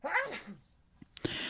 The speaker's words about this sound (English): Gesundheit.